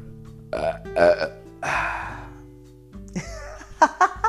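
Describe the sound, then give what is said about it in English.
A run of loud burps: two short croaks, then a long drawn-out belch, followed by a few more rough gulping bursts. No one speaks. “Anyway, I'm back and I apologize for burping.”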